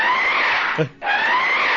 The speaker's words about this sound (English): So much so that my little monster began to roar. What the hell is that? Exactly.